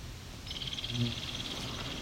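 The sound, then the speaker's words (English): Flight calls of a couple of American goldfinches flying over a swamp, a rapid stuttering series of thin, high chips starting partway in and continuing steadily, fairly faint against a soft outdoor background with a brief low rumble. “And a couple goldfinch flying over.”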